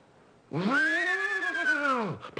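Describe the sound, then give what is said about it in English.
A human voice imitates a horse's whinny, as done for the horse in the radio westerns Buck Benny Rides Again: one loud, sustained nasal cry that rises, wavers slightly in the middle, then falls away, with no talking over it. “So first do just the horse, the whinny.”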